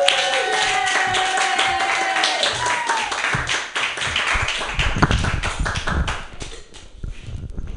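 A comedy show audience claps enthusiastically as the next comedian is introduced, a dense, steady wash of applause for several seconds, with a few voices cheering at the start, before the clapping thins out and tapers off at the end.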